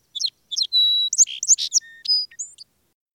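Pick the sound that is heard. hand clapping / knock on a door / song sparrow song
song sparrow song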